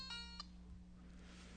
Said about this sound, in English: I thought I had it on silent.